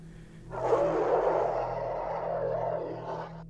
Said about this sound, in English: Until out in the distance I hear a muffled roar.